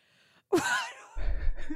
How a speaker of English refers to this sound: Is this a sign of more to come? Are you a single sneezer? Like when you sneeze, do you only sneeze once?